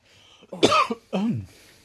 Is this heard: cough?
yes